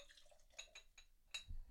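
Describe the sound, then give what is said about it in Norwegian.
Beer is poured into a glass by the speaker for himself, with soft splashes, a few bright glassy ticks and a low glugging swell near the end. It is quiet, with no voices. “Jeg skal helle opp på meg selv her nå.”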